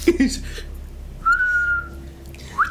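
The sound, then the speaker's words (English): A person tries to whistle, producing a thin, wavering tone that holds briefly and then a short rising chirp; the attempt sounds weak and airy, with a few breathy sounds before it. “I can't even whistle. That was pathetic.”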